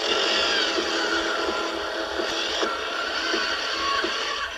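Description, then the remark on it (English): A gas-powered auger with a 3-foot-long bit runs steadily, a loud continuous engine drone with gritty, scraping texture as the bit churns through and breaks up dirt before digging, with occasional brief knocks and no voices. “This gas-powered auger with a 3-foot-long bit helps break up the dirt.”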